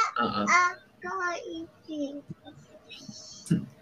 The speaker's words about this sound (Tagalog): May bata.